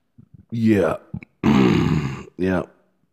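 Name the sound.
a loud burp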